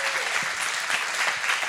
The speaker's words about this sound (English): So the other really cool thing that I got to mention last night is Star Valley, our campus in Star Valley, Wyoming, actually launched their youth group last month. And so will you give them a round of applause? That's a big deal.